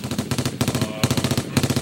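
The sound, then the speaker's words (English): A voice imitates M16 machine gun fire with a rapid, steady stream of harsh, buzzy staccato bursts, loud and continuous for nearly two seconds, with a brief dip midway before resuming. “Do the machine gun again.”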